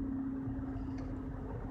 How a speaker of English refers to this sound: Hold on, let this truck pass.